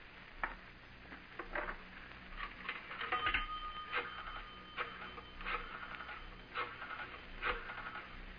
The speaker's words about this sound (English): I'm going to make a phone call.